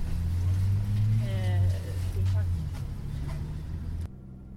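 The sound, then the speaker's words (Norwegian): A bus engine rumbles steadily while driving visitors under escort into a site at Kola, a deep droning hum that stays loud, with faint muffled voices underneath before the noise drops off near the end. “Vi må bli eskortert inn på området i en egen buss, og alle våre personlige eiendeler, inkludert nistematen vi smurte på hotellet, må ligge igjen utenfor.”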